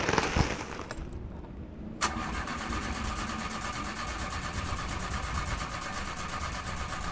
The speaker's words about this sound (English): but when I wanted to get the car started to crank up the AC, it just kept stuttering. What? You're kidding. Nope. Tried a few times, and it sounds nothing short of a rusted old jalopy.